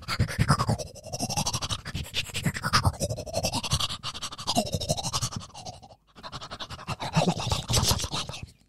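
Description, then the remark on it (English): Brisk, rhythmic toothbrush scrubbing, a dense run of rapid scratchy strokes that keeps going for about six seconds, breaks off briefly, then resumes. No one talks. “Oh, you want a toothbrush? I'm no dentist, but I will give it a go.”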